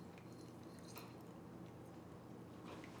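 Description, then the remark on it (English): Quiet chewing of a crunchy snack food, with soft irregular crunches and moist mouth sounds over a steady low background hum; no one speaks. “Yeah, I'm chewing.”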